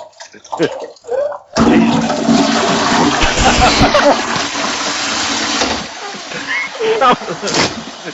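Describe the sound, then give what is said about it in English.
A toilet flushes loudly, a rushing gush of water lasting around four seconds before tapering off, with people talking just before and after it. “Someone's just gone flush down a Werribee.”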